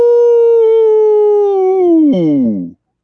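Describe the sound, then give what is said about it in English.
A wolf gives a single long, loud howl that holds a steady mournful pitch for about two seconds, then wavers and slides downward before cutting off, clear with nothing else around it. “When the pigs sang around the piano, the wolf howled along with them.”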